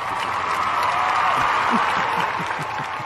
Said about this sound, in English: I'm going to be introducing two new segments of the show in this episode. Yay! If I had, I can find some clap audio.